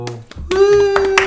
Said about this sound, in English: Everybody, give him a round of applause. There's your round.